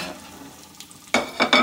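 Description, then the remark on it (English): Cured bacon frying in a pan: a faint, steady sizzle that breaks into three loud bursts of crackling hiss in the final half second, with no voices. “All right, we're going to take this bacon out.”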